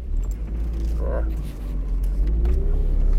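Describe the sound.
A car engine rumbles low and steady throughout as the car is parked around a tight corner, with a brief jingling sound near the middle and a faint, muffled voice underneath.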